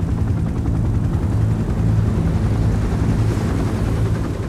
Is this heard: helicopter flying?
yes